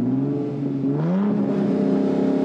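A car engine revs up and accelerates, its tone climbing steadily in pitch and holding a loud, sustained roar for a couple of seconds with no talking.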